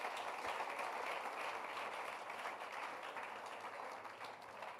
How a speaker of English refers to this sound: Give them a round of applause once again.